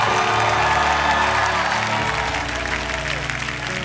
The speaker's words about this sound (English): Come on, praise Him. Come on, let me hear you shout. We don't have to stop shouting.